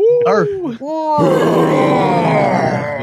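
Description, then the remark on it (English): A deep, guttural groan gives way to a loud, sustained roar that fills the second half. It is forceful, rough and raspy, and fades only slightly at the end. “It is time for our roar of the week.”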